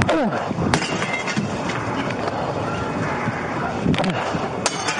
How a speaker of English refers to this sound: Body cam footage shows the police officer in Mesa, Arizona, throwing rocks to break open the window.